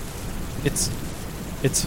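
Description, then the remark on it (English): Steady rain hisses throughout with a low thunder rumble underneath, broken by two brief, sharper bursts about a second apart. “I mean, given the rain, it's probably hard to see anyway”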